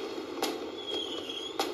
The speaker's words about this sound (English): I feel like for New Year's, you guys want to hear some fireworks. So we're going to do some fireworks real quick.